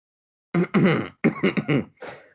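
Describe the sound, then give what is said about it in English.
A woman coughs in a harsh fit: a long rasping cough, then a quick cluster of three or four hacking coughs, trailing off into a softer final one. No talking. “will cough herself.”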